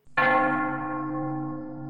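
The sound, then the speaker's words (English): The heart bell beneath the deck of the ship Uhuru is struck once as final rites, loud, its low droning ring hanging in the air and slowly fading with a rich, humming tone. “Meanwhile, beneath the deck of the Uhuru, the strong arms of Daisy and Fuentes move to give Dreff his final rites by ringing the heart bell.”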